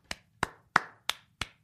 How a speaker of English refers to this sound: Wow. I hope, Baby Nation, I hope you're clapping along. I feel like I can hear it.